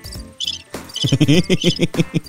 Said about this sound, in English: If you're listening in the car... Is someone behind you? And it's a cricket. Look out.